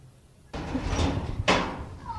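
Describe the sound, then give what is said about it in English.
Two sharp knocks on the door of a house, the speaker's mother's house, about a second apart, fairly loud over a steady background. “Knock, knock. Right now I'm at my mother's house.”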